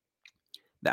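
A short, stifled cough or throat clearing bursts out near the end after a couple of faint mouth clicks, fairly loud, cut off abruptly.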